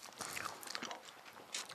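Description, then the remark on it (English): Someone chews a sour Sherbet Lemon boiled sweet made by Maynard's Bassett's, with soft irregular crunches and sticky clicks over about two seconds. The sounds are quiet, with a sharper crackle near the end and no talking. “I do like this boiling thing. It's different. It's kind of sour.”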